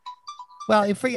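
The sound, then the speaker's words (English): A short electronic phone ringtone plays a few quick, thin beeping notes, then a loud voice starts talking and drowns it out. “Hold on, I'm going to turn off my phone because.”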